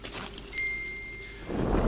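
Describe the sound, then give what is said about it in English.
A single bright ring of a small red bell by a fireplace, shaken and rung with clear high overtones that hang and decay for about a second before a low rumble of background noise rises. “You ring the red bell by the fireplace.”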